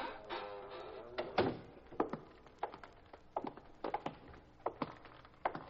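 A warehouse side door thuds shut with a solid knock, followed by a steady run of sharp footsteps walking across a hard floor toward the far end of the warehouse, with no voices.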